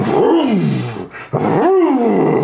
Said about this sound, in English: Puts it into a little slot, slides it down, and you hear this. The screams of the damned just kind of roar up, flame gouts out the back of the war machine.